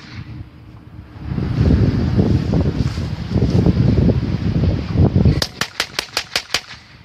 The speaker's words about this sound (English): Let's hear the propane cannon being fired off in North Adams, Massachusetts, to get rid of the crows hanging around the electrical substation. doesn't sound like a cannon. If I'm a crow, I'm out, though.